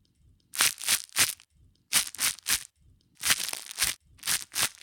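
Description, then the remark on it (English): Someone bites and chews crunchy toast: sharp, dry crunches in uneven bursts of two or three, bright and crackly, with brief pauses between, no voices. “I mean, that sounds like someone biting into said piece of toast.”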